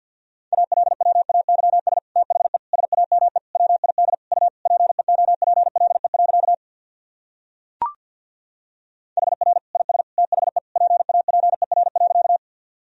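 Rapid Morse code at 50 words per minute: a steady mid-pitched tone keyed into fast dots and dashes, broken by a pause with a single sharp click before the sending resumes.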